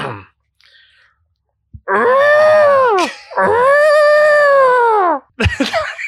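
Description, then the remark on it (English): A person gives two long, loud, drawn-out deer calls, each a moaning bleat that rises and falls, with short pauses and a brief breathy noise at the end. “but I want to see if you can maybe throw something a little different this time as we roll into deer call.”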